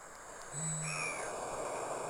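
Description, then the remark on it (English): A recording of a single deep, low booming note of an Australasian bittern, lasting about half a second, with thin whistling calls of other birds and a steady outdoor hiss behind it. “the mythical bunyip is the actual bittern”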